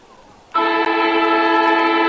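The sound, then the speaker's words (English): A loud, steady horn-like siren blares suddenly after a quiet moment, signalling the start of the third quarter of a match, and holds one sustained, harmonically rich tone without letup. “Siren goes for the start of this third quarter.”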